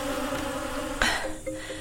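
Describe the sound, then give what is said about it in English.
A steady, droning buzz from an insect that looks like a mosquito but is not one hums for the whole moment, interrupted midway by a sharp thump before the whine carries on, slightly wavering. “It looked like a mosquito, but definitely wasn't.”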